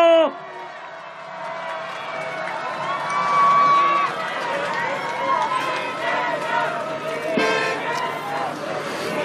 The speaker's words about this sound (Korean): 존경하는 서울시민 여러분, 위기에 강한 유능한 경제 대통령, 제20대 대통령 이재명 후보입니다. 뜨거운 박수 함성으로 맞이해 주십시오.